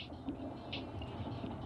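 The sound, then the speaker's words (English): A train rumbles steadily along the tracks as it comes up to a destroyed-looking train station, a continuous low rolling noise with faint higher squeals, moderately loud, with no voices. “Oh, you stop at a destroyed looking train station and a train comes up on the tracks.”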